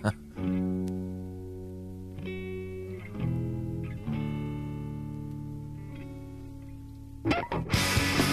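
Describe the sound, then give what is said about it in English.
Distorted electric guitars play sustained harmonized chords together in a rock song, shifting every second or so, loud, ending with a brief noisy burst. “Oh yeah, listen to the guitar harmonies.”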